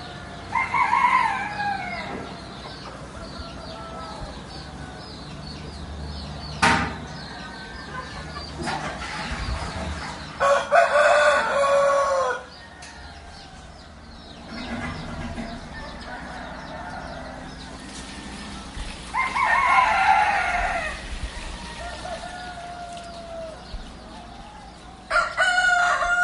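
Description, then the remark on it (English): Roosters crow several times, loud harmonic calls rising and falling, with lots of chickens clucking and scratching around them in the small backyard of a bed and breakfast in the early morning, with a steady background hum. “There's some places for washing clothes. Chickens. Lots of chickens.”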